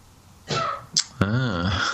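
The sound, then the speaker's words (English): A single sneeze from someone in the background a couple of rooms away, a breathy drawn-in build-up followed by a sharp burst and a voiced, trailing release, heard on its own and sounding somewhat distant and muffled. “I like the way someone sneezed in the background just at the end of that question.”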